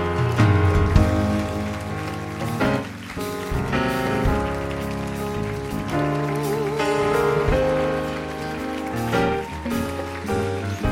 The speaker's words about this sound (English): Give these guys a big clap as they come.